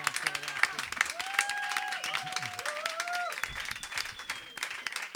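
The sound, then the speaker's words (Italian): A crowd applauds steadily and fairly loudly for several seconds, dense clapping with a few whistles and cheering voices rising over it. “E questo è l'applauso grazie.”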